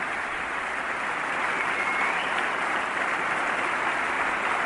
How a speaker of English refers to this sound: That everybody applauds, which is because we all feel, hopefully, an obligation to veterans.